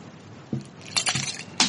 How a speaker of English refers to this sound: I can hear the ice clinking against the glass. Oh, hold on. You want to hear some ice? Here we go.